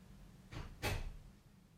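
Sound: door opening and closing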